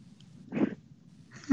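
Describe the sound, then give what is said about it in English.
A single short, breathy sneeze bursts out near the middle, moderately loud, followed by quiet and the start of another sharp sound at the very end. “Bless you.”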